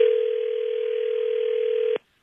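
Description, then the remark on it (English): A steady, continuous telephone dial tone hums loud for about two seconds as a call is placed from the Hits 96.1 radio show in Charlotte, then cuts off abruptly with a brief click, leaving silence. “Let's go ahead and get Drea on the phone.”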